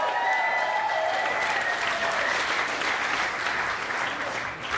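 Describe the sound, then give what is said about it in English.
Sustained applause from a large comedy show audience welcoming round-two comics Guy Branum, Caitlin Gill, TJ Chambers and Beth Stelling, steady and dense clapping at a consistent loudness for several seconds, with a faint murmur of crowd voices underneath. “Clap your hands.”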